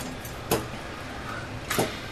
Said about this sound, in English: Okay, well, he leads you over to a door, and he knocks on it a couple times, and it unlocks from the inside, and he opens it up, and there is a Rhodian female standing there.